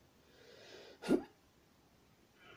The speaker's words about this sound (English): Oh, there was a good fart.